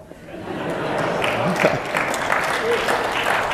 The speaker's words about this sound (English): Oh, let's applaud this too.